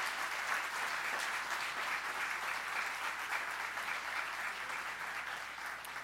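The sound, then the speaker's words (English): Steady, sustained applause from a church audience for its 2018 high school graduates, a dense wash of many hands clapping at an even loudness for about six seconds, easing slightly toward the end with no voices. “So let's give God a round of applause for our high school graduates for 2018.”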